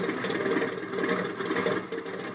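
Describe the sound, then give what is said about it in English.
A small plane's engine idles steadily as it turns around and taxis, a continuous, even mechanical drone with a faint rapid chatter and no voices over it. “Hey, you're turning the plane around. Certainly. Now we taxi.”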